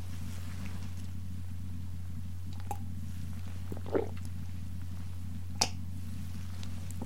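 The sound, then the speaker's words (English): A few quiet, brief sounds of someone sipping hot coffee, with small clicks of a cup being set down, over a steady low electrical hum. No one speaks. “I'm going to take a sip of coffee right now.”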